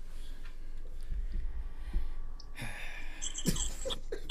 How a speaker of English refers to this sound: Why you breathing so hard, bro?